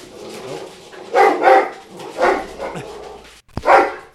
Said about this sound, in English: They're barking at the smallest dog. This like tiny, like 10-pound dog just walked by and they're like going crazy. They're like, "Get away from here, small demon."